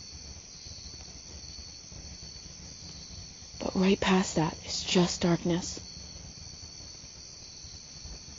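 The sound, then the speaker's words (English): A steady, high chorus of night insects and frogs chirps outdoors in the dark by a street lamp throughout, a continuous shrill drone, while a person speaks quietly for a few seconds in the middle. “I can really hear the insects and the frogs.”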